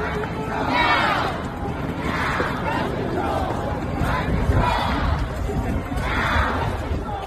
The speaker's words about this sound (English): But here's what it sounded like as that crowd gathered.